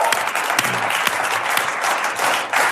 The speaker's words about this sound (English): Awesome. Give that a round of applause.